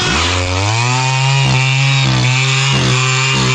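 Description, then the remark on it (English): The small two-stroke engine of a motorized tree scooter, used by a betel nut farmer in southern India to climb 20-meter betel nut trees, drones steadily and loudly. Its pitch climbs as it revs up, with several brief dips and sputters as the throttle eases off and catches again. “This tree scooter is the brainchild of a betel nut farmer in southern India.”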